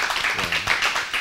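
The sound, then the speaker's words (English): A short burst of steady clapping, dense and continuous, like a small group applauding together, celebrating a trucking business's fleet of 11 trucks, with a faint voice murmuring briefly underneath. “That's a round of applause, 11 trucks right there.”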